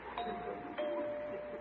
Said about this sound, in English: Here he comes up on the porch. He's at the door. Must be reading the note now. Why is he ringing the doorbell after I left him that note?